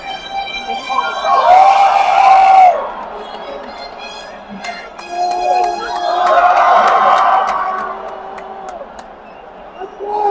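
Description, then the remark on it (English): A baseball crowd stirs before a pitch in the bottom of the sixth inning, with Vladimir Guerrero at the plate and runners in scoring position; a steady murmur of many voices swells louder twice, with scattered sharp claps and whistle-like tones rising over the hum. “And the crowd stirs before the pitch is thrown.”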